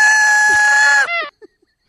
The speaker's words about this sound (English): rewards that can put you toward a central piece of the celebration, an air horn.